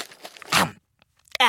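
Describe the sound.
Crisp crunching as Larry eats dry uncooked noodles left by the gourds: a few brittle bites in quick succession, a short pause, then a loud voiced sound at the end.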